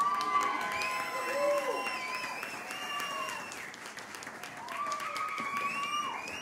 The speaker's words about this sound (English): But I say that because when I invite these people up, I want you to cheer the heck out of them, all right? Clap for them. Make them feel so welcome and special.